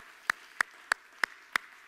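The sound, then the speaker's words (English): A group at a worship service claps hands to the Lord in steady unison, six sharp claps landing on an even beat about three per second, loud and crisp against quiet surroundings with no voices. “One more time, if you could put your hands together and clap to the Lord.”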